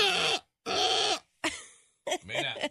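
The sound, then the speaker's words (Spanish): A person imitates a ram's bleat with several loud, wavering bursts, two long and strained followed by shorter quavering ones, with a rough, nasal, vibrating quality. “Yo creo que si un carnero sería así, mira, este sí me sale bien.”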